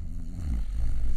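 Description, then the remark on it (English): A low, rumbling snore sound effect drones steadily for about a second, with a throaty vibrating buzz and no talking. “You took the snore off there, didn't you?”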